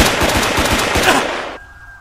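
Rapid automatic gunfire, a loud burst of evenly spaced shots, fires steadily for about a second and a half, then stops abruptly, leaving a faint high ringing tone.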